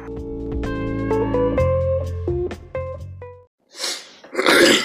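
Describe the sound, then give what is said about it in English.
Music plays and stops, then after a brief pause someone loudly clears their throat in two rough, raspy bursts, the second stronger than the first. “Clear my throat, like always.”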